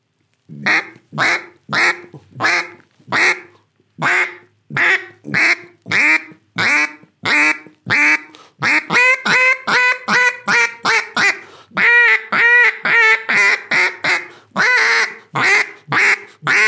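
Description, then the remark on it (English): A duck call blown while practicing rhythm, opening the hand with each quack, producing a long run of loud, raspy quacks in a steady, even rhythm, some notes slightly longer and fuller toward the end, with no talking. “and just basically every time you quack, you open your hand, getting that rhythm down.”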